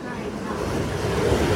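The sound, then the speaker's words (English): A steady, rushing roar of ocean surf fills the short recording, broad and continuous with a deep rumble underneath and slight wind buffeting on the microphone. “Okay, we're going outside so you guys can hear the waves.”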